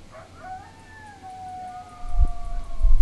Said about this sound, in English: We live kind of out on the edge of town, and there are coyotes howling, but I'm also hearing sirens. I so wish you guys could hear the coyotes. It sounds so awesome, but the sirens. I don't know if you could pick up any of it.